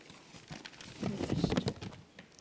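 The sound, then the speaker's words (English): A sheet of paper with Bible verses written on it being folded and crinkled: a short run of soft, irregular rustles and crackles that swells in the middle and fades out, with no one talking. “Let me just fold my paper.”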